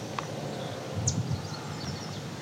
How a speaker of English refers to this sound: Some crow in the background, American crow. The yellow warbler is annoyed with this. A little chip sound.